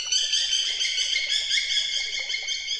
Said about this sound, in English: We were intrigued by the Washington Post story about studies showing that a particular sound from nature has special benefits: birdsong.